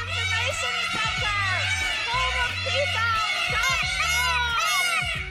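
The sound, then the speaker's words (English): A flock of peacocks screaming together, loud wailing calls overlapping continuously with no break, a dense, shrill chorus that sounds almost like a crowd of shouting people. “You don't know what a peacock sounds like?”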